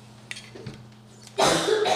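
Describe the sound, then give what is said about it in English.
A loud burst of harsh coughing erupts after a quiet moment, a rough, sustained coughing fit with no speech over it. “Me and my coughing spells.”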